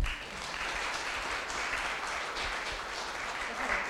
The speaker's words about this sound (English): So thanks for joining us. Can you give her another clap?